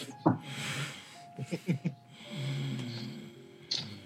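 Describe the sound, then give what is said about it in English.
A person makes a rough, snorting growl with their voice: a few short guttural bursts, then a longer low rumbling snarl, ending with one more raspy snort. “No, that was me making a growly noise, but I wasn't doing it right.”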